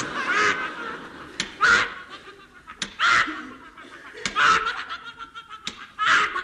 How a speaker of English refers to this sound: Oh, someone knocking on the door with a duck.